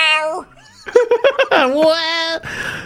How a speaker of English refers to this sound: the cat said, hello.